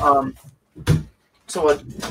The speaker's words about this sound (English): Okay. I forgot to close my door. Okay. Could be important.